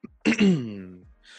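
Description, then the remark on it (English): A single fairly loud throat-clearing cough with a rough burst that trails into a falling, voiced groan, then a soft breath at the end. No talking. “As I'm coughing here and breathing, sighing deeply, I guess that's it.”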